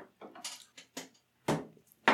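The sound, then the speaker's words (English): Glasses of whiskey clink together in a toast before a shot, a quick run of short, bright knocks followed by two louder, sharper clinks, with no voices over them. “I know exactly where I stand on pondering this. Upon this glass of small whiskey. Cheers.”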